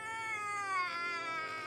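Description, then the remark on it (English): A baby boy wails loudly in one long, unbroken cry, high-pitched and piercing, its pitch wavering slightly as it holds steady throughout. No one speaks. “Finally, having enough of my efforts, he let out an air raid siren of a wail.”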